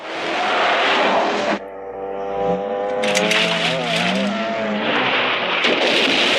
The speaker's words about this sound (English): That always stresses me out. That cop car runs over that boulder, just smashes the undercarriage of that car.